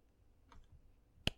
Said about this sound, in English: Slow clap. I'm waiting.